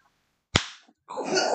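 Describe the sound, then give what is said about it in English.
A single sharp slap of a hand on bare skin, loud and crisp with a brief fading ring, followed after a short pause by a sustained breathy, tonal sound. “And I have to slap it again, right?”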